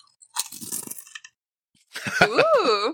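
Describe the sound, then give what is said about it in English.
Crunching on Doritos chips: a burst of crisp, crackly bites for about a second, followed by a pause and then a person's voice making a sliding, exclamatory sound. “I'm eating Doritos. Do a crunch.”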